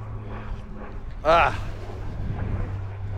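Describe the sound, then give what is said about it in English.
An airplane passes overhead as a steady, low engine drone that hums through the whole stretch, broken briefly by a sharper, louder burst of sound partway through. “And now there's a plane.”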